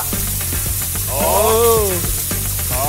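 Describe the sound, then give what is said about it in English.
A balloon being inflated: a steady hiss of rushing air with a brief squeaky, rubbery whine rising and falling midway. No one talks. “All right, let's get this balloon blowing.”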